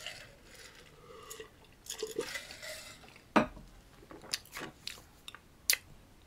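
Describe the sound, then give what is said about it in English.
Someone drinks water, with quiet sips, a few wet swallowing gulps and soft clinks, scattered irregularly over several seconds with no talking. “Get some water again.”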